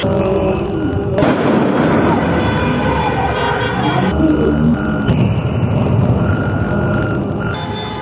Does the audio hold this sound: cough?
no